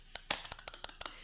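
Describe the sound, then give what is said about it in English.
A short burst of about seven hand claps in a quick, steady rhythm, each one a sharp crisp slap, with no voices around them. “As they walk, Legon comes up behind and puts his jacket over her shoulders, and let's clap for the smooth gentleman.”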